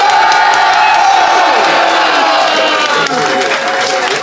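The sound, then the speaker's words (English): A large audience bursts into sustained applause mixed with loud cheers and whoops, a dense, continuous roar of clapping, as the audience applauds to vote for which side of a debate won. “if you think Lou and Fanshawe, and of course James, came out on top, applaud now”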